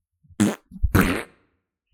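fart sound effect

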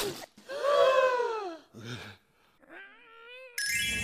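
loud sneeze

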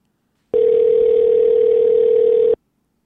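phone call ringing tone

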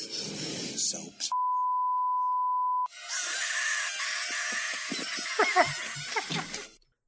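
long beep

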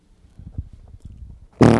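fart

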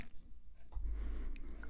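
sipping coffee

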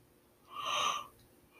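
yawn

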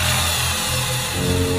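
power drill whirring

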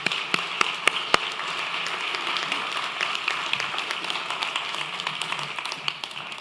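audience applauding

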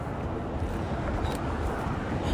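cars driving by

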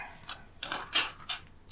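paper rustling

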